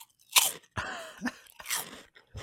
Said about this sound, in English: I now love the butternut squash stalks. Yes, the butternut squash stalks. It's a nice it's a nice crunch.